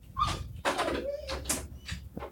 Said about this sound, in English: Is that him trying to come through the door? Yes. I think so. Yes, it is.